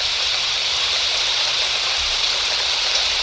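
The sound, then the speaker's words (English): Steady rain sound effect played from a soothing-sounds app pours without a break, a dense, hissing wash of bright static with a faint crackle, holding even and fairly loud throughout, with no voices. “And let me see if I can find the rain.”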